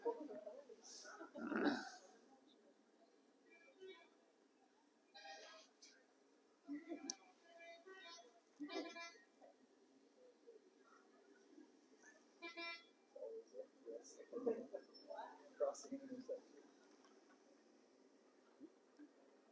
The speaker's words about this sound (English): This is at one of the major intersections. There are stoplights and walkways, but they don't work. So if you're driving or trying to cross the street, here's what we face here.